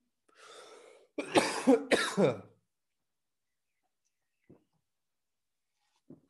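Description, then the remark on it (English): A sharp intake of breath followed by a sudden burst of three harsh coughs in quick succession, then near silence with a couple of faint clicks. “I almost died then. That cough come out of nowhere.”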